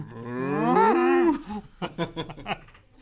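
A single long, loud cow moo, swelling and then sliding down in pitch over about a second, followed by a few seconds of indistinct talking.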